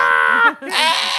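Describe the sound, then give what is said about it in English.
A person imitates the screaming goats of YouTube videos: a loud, quavering bleat-like cry that breaks briefly in the middle and then resumes, strained and wavering, with no other sounds around it. “The screaming goat videos? Where they scream.”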